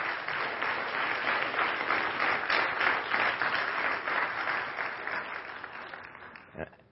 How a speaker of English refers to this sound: And I think, let's clap for that. Come on.